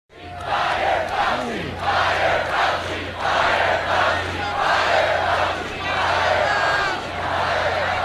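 A large crowd at Donald Trump's South Florida rally chants a short phrase in unison, urging him to fire Anthony Fauci, repeating it in steady rhythmic bursts, loud, with a constant low hum underneath.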